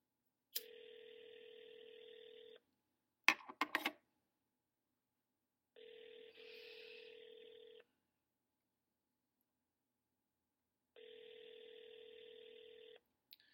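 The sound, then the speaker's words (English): A telephone ringback tone from a call to a woman's cell phone on a Sunday morning repeats three times, each two-second ring separated by long silences, with a brief burst of clicks and dialing beeps after the first ring; nobody picks up. “So it either rings forever, and I go, she's not home, or I call, and I try her cell phone.”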